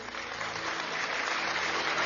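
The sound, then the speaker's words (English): A crowd claps steadily for a man of God, Prophet Godfred Essel, a dense wash of many overlapping hand claps at an even, sustained loudness with no voices standing out. “I want you to clap for the man, okay? Clap for the man of God.”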